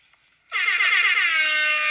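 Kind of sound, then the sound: sound effect, air horn sound effect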